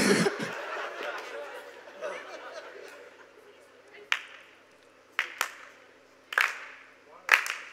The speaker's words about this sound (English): I don't know why they're clapping.